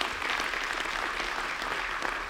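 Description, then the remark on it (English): A church audience applauds steadily after hearing that the church has given over 100,000 backpacks of food in 10 years, a dense wash of many hands clapping at once with no pauses, sustained and fairly loud throughout. “You're like, I feel weird clapping for myself.”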